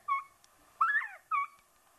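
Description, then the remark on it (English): A whistle caller imitates a quail covey call: three clear whistled notes, a short one, a longer rising-and-falling middle note, then a final note, fairly high-pitched and loud with no talking. “That's a covey call.”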